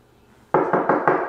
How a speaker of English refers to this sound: Knock on wood. But yeah, it's still kicking.